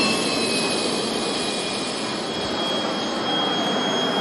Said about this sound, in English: It was one of the most highly anticipated drills of this year's War Games, emergency takeoff and landing on a narrow strip of road. On Wednesday, an IDF jet was the first to tear down the Jiadong wartime runway.